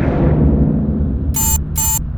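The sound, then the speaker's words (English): A timer, set for 12 minutes before a storm hits, goes off, sounding two short, bright electronic bursts in quick succession over a steady low rumble of background noise. “What the hell is that? I set a timer.”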